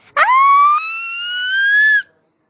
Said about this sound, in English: I jumped. The doorbell was a scream.